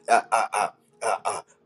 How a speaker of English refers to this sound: Do you hear the birds? Somebody say, I don't hear nothing. But I take pleasure in even listening to the birds when they chirp.